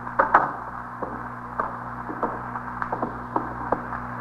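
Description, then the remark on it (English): A door swings shut with a soft creak and latch click, followed by several faint, scattered clicks over a steady low electrical hum. No one speaks. “Close the door”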